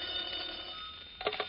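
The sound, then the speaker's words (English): A telephone bell rings in one sustained, bright metallic trill, heard alone with no voices, then a short clatter near the end. “If you have a friend who is a representative of the Equitable Life Assurance Society, maybe this phone conversation will sound familiar to you.”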